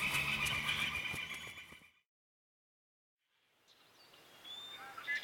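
Loud horse whinnying fills the first two seconds, then cuts to silence before faint outdoor ambience with a few thin bird chirps returns; the horses are beyond some trees.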